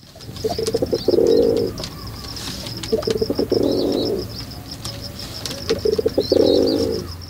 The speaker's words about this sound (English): Take the rock pigeon. These guys court each other with gentle coos, and to signal distress, they use a harsh grunt.